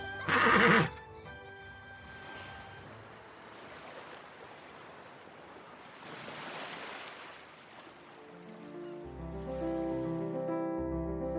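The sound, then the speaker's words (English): On a beach, Pao Kong's horse, which children are riding, gives one loud whinny at the very start, followed by the steady wash of ocean waves; soft tonal music rises near the end. “Cao Yang takes a nap on the beach, and Pao Kong even lets the children ride his beloved horse.”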